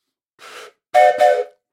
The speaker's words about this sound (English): Wow, the train! Do you hear the train? It's talking to me at this point.